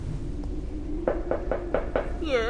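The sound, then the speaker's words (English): Five evenly spaced, resonant knocks strike one of two huge iron doors, about a dozen feet high, at the entrance to a lair on an island, over a low background hum, followed by a brief wavering tonal sound. “Ignatius's lair is within these doors, two huge iron portals, easily a dozen feet high. I'm going to knock.”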